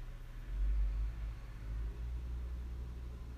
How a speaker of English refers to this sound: I'm just gonna let this truck pass.